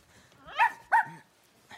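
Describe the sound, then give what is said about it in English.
Two sharp, high-pitched barks from a small dog ring out in quick succession, followed by a faint yip, with quiet background in between. “Next, a boy. Whoa. And his dog.”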